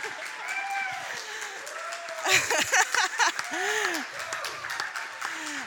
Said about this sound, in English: Yeah, you can clap. You can clap a bit. Yeah.